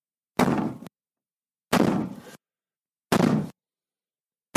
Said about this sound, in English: This time, instead of opening the door, LeBlanc called out, "Who's there?" The knocking grew louder and more insistent.